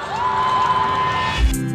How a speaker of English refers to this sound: Ladies and gentlemen, how about another round of applause?